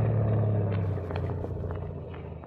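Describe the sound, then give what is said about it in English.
A boat engine drones steadily on open water in the dark, a low throbbing rumble that holds for the whole stretch and eases slightly toward the end, with no voices. “Stop the boat here. Here? In the middle of the water? Right here.”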